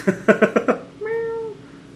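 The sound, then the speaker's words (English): A cat named Modi meows while in a lap: five quick, clipped chirping meows in a fast run, then a pause and one longer, steady, drawn-out meow. “Modi the cat is now in cuddle timeout in my lap.”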